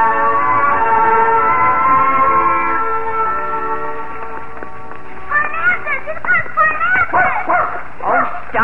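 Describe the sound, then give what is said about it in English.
A dog barks in a quick run of short, high yelping barks, fairly loud, following a few seconds of a steady sustained tone. “At that hound, Bach. One bite and he'll get you down to puppy size.”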